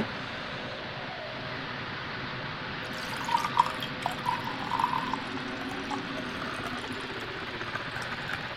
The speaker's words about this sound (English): A 2018 just standard red wine. It's not even a specific type. But let me get you a dirty pour. Let me pour one out for you.